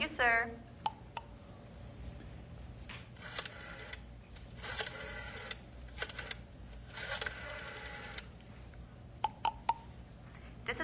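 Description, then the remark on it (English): A telephone number being dialed: scattered sharp mechanical clicks and short whirring rattles come in bursts, moderately loud, over a low steady background hum. “Operator, what number are you dialing, please?”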